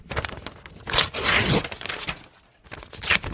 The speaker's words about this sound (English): I'm going to make some strips of paper here.